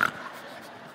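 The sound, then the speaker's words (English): A parent imitates a drug-sniffing dog smelling their child, a breathy, hissing intake of air through the nose that starts sharply and then carries on steadily for about a second, with no talking. “You're going in there, "Hey, how are you?" Like a drug-sniffing dog.”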